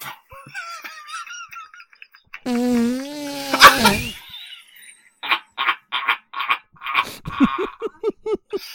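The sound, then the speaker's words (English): A drawn-out, buzzy fart noise, apparently blown by mouth, rises and wobbles for about a second and a half, then gives way to a run of short, rhythmic laughing bursts. “Farts in Atlantis.”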